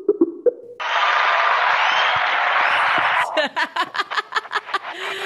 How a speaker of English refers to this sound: Wow, it's nice to get a cheer every time I pick up the phone. Apparently your fans are here too. Wow, that is some positive reinforcement.